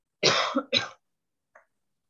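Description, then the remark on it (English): Two sharp coughs in quick succession, fairly loud, followed after a pause by a tiny faint throat sound. No talking. “They heard you cough.”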